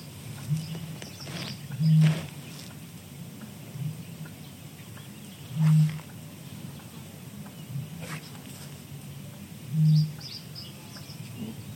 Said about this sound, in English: We also heard bitterns booming, which was really, really special. I've never heard that before. It's the first time I've ever heard that.